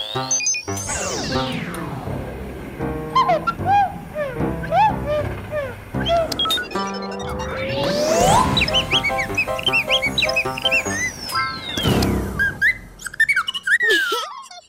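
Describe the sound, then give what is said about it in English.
Warbling, birdlike chirps and whistles from a demonstration of a voice changer for birds, warped by swooping pitch slides that rise and fall, sounding electronically altered, playing continuously and fairly loud for about fifteen seconds with no one talking. “Billy wants to make a voice changer for birds. He says he will now show us how it works.”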